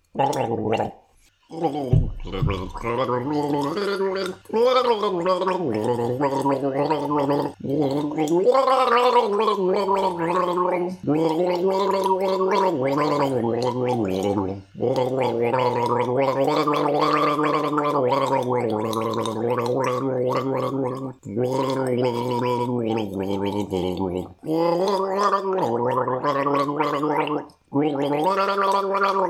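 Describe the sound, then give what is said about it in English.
Someone in Austin, Texas gargles water while humming the melody of the United States national anthem: a continuous, bubbling, voiced gurgle that rises and falls in pitch, broken by a few brief pauses for breath. “I'm going to get some gargleable materials, such as water.”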